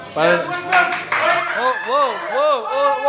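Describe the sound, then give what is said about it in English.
Several voices in a crowd shout out answers at once in a loud, overlapping jumble, some calls rising and falling in pitch, with what may be scattered clapping underneath. “Don't listen to the crowd.”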